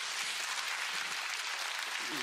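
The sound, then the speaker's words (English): An audience applauds its elders together, a steady dense wash of many hands clapping at once with no distinct individual claps standing out, sustained at an even loudness throughout. “Can we just clap for our elders?”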